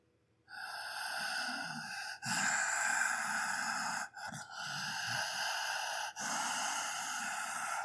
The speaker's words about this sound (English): As well, when I'm breathing, I restrict the flow at my throat like this.